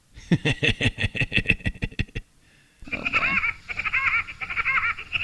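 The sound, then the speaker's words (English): A Woody Woodpecker cartoon laugh sound effect: a rapid, loud burst of staccato, nasal pulses, a brief pause, then a warbling, trilling continuation, with no talking. “Oh, Woody Woodpecker.”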